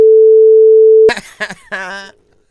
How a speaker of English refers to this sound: Beep!